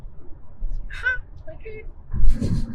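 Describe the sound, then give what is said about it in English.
A voice makes a short, high-pitched squeaky "meep," followed by a couple of fainter little squeaks, then a louder burst of voice and breathy noise at the end. “Like you it's like you're pressing those stuffed animals and says, try me. And then he's like, meep.”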